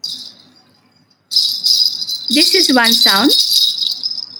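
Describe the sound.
Nupur ankle bells jingle in a continuous bright shimmer, faint at first, then loud after a short gap, with a man briefly speaking over the steady jingling.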